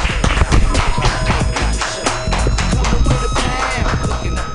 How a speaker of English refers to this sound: Clap your hands together for Mark Neuer.